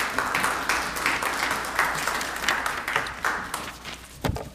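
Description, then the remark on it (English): A crowd at a church service applauds the families who raised these children, many hands clapping steadily in a dense, even patter with a few sharper individual claps standing out near the end. “I'm sure they appreciate the applause for all it took for them to raise these children to get to this point.”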